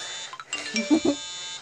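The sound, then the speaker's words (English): A quick run of phone notification chimes: a few short electronic tones, some bright and high, followed by two lower, rounder blips, at moderate volume with no one talking. “Hold up, I'm getting some notifications real quick.”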